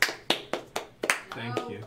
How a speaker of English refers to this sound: Can we have a round of applause, please?